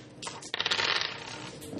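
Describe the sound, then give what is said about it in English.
Three fate dice are rolled, clattering and rattling across a hard tabletop in a quick burst of bright tumbling clicks that settles within a couple of seconds. “So three fate dice. Yeah, so roll these.”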